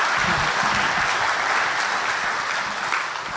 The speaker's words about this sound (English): Can we give a big round of applause to your pastor, Pastor Rob? We love you, man.